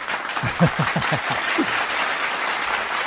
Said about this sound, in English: Thank you. Yeah, clap for yourself. Awesome. It could have been me that started that applause, but it's all right. No one has to know.